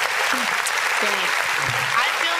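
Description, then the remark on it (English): Loud, steady applause from a crowd, a dense wash of many hands clapping with no breaks, while faint voices murmur and call out underneath. “Whoa, I feel whoa, like what a clap for that.”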